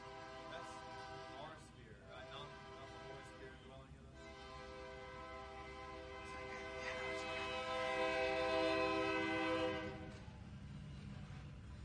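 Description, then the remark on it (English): A passing train blares its horn in long, sustained chord-like blasts over a low rumble of rail cars, swelling louder toward the end before easing off. “We'll wait till the train passes.”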